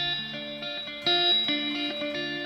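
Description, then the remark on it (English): An electric guitar with a Filtertron pickup on the treble setting plays a short, ringing melodic phrase of sustained notes, fairly loud, with a bright, chiming tone and no voices. “I think even without the reverb, you can kind of hear that filtertron.”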